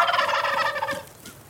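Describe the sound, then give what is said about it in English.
A wild turkey gobbles: a loud, rapid, rattling burst of throaty warbles that rolls quickly, then tapers off, with no talking. “And of course, there's the gobble itself.”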